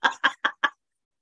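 A chicken clucks four times in quick, evenly spaced bursts, clear, then falls silent. No one speaks.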